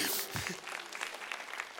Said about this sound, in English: So why would we live and stay in the prison when God has freedom for us? Yeah, you can clap for that if you want.